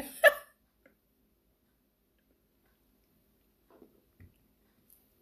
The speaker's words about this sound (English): Let me just go over here and sip my OJ.